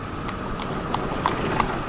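Horse hooves pulling a buggy clip-clop at a steady, even trot, about six crisp knocks in two seconds, heard over a constant low rumbling hum.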